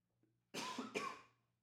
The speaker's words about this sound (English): Oh, man, that was a big cough.